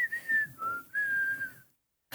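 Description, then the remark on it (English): Someone whistles a short melodic tune from a rock song, three clear phrases with shifting pitch, sliding between notes before stopping abruptly into silence. No talking. “Good one with the whistling.”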